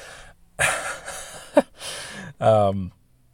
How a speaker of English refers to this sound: Oh, I need a cough. I feel like I need a cough. Oh, that's so much better. Sorry if you're wearing headphones.